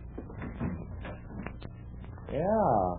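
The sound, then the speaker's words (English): Clicks and rattles of a handle or latch, followed by a drawn-out, wavering creak as a door at the back of a shop swings open onto a small courtyard. “Well, let's see what's on the other side of that door.”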